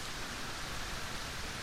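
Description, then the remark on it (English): A steady, dense hiss of heavy rain pours down continuously, filling the whole space evenly with no breaks, drops or voices standing out. “The rain begins to fall heavier.”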